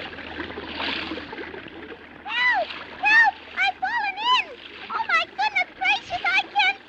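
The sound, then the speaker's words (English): A rushing splash of water as a walrus and a man fall through cracking ice into a river they were crossing, followed by a quick run of high, squeaky, warbling cries in short bursts, moderately loud. “the ice on the river they were crossing went crack. And you'll have to admit it's a horrible sin, but Whiskery Bill and the walrus fell in”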